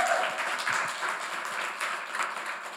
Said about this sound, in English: For this, Chelsea, give Chelsea a round of applause.